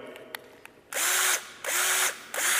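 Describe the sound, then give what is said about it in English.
A power drill revs up loudly three times in quick succession, each whirring burst lasting about half a second, with a few faint clicks before the first and no talking. “I can just rev the engine, play with it.”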